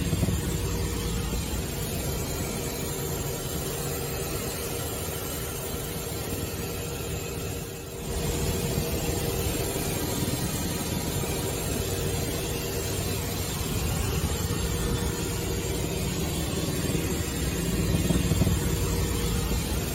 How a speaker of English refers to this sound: So that's from the helicopter flyover that they had. One of the pilots was taking a video of the stadium below.